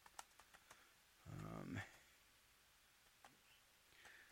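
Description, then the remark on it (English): Scattered keystrokes on a computer keyboard as someone types in information, a quick cluster of crisp clicks followed by a few isolated taps, with a brief muffled vocal murmur in between, all fairly quiet. “And as I'm typing in this information here.”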